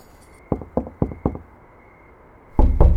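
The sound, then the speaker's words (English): Four sharp knocks on a wooden door of a little back room behind a closed store, in an even rhythm and fairly loud, followed by a pause, then a louder rustle or bump near the end. “Jeff lives in the little room in the back. You knock on the door.”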